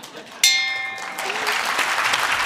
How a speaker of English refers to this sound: And I get to hit the gong.